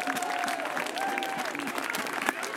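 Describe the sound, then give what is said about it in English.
A crowd at the 2018 Firebrand Barbecue Championship awards applauds the announced Grand Champion, a dense wash of clapping holding at an even loudness throughout, with a few faint whistles or cheers rising above the noise. “Ladies and gentlemen, please give a huge round of applause to one of the most dedicated and successful men in barbecue.”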